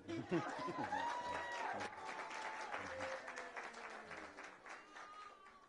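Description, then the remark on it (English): A crowd cheers for the newly crowned queen, bursting into steady applause mixed with cheering and high whoops, loudest at the start and gradually tapering off over several seconds. “I think you need to cheer for the queen.”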